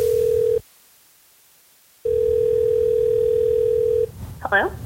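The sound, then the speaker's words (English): Two steady electronic ringback tones sound over a phone line, separated by a short silence, then a woman at her house briefly answers at the end as the call connects. “Normally she would have been in Salem, but she was home with a sick kid, so I spoke to her by phone from her house.”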